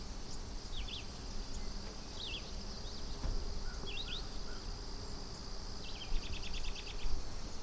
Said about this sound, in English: I love the sound right now, this time of day. It's like crossover time. Birds are still out, but the peepers are starting.